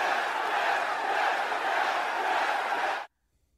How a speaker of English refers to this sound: I feel like crowds cheer when big moments happen, regardless of what the big moments are. That was a massive moment in the show.